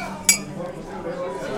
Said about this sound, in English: How about how it broke so easily? Wow. I've never seen a glass just like shatter on impact.